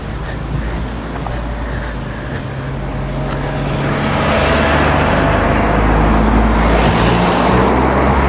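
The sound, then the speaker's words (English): A small micro car drives past, its low engine hum and tyre rush swelling from quiet to a steady, louder roar over several seconds. No one speaks. “I'll wait till this little micro's gone past.”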